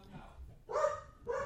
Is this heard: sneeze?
no